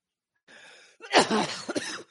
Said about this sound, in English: Like I said, here's some of that coughing, like I said, that comes up once in a while.